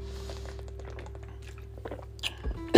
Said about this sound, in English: Let me sip some water.